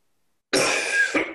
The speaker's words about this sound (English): He told me not to cough and splutter.